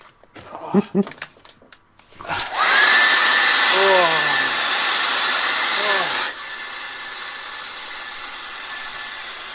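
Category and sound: household object, hair dryer blowing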